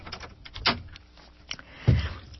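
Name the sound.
door being closed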